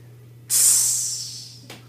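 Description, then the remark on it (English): A voice imitates a sizzling hot plate with a sustained, bright hiss that starts abruptly, holds for over a second while slowly fading, then ends with a brief second puff of hiss. “No, no, it's like we're touching a hot like thing. We're sizzling a hot plate.”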